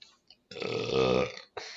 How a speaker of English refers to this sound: We are not editing that out because that was a really mighty burp.